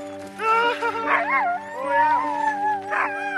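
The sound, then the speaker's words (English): A team of racing sled dogs in Whitehorse, Yukon, Canada howls and yips together in overlapping, wavering cries, with excited barks mixed in, loud throughout a few seconds of continuous noise. “his team of racing dogs in Whitehorse Yukon.”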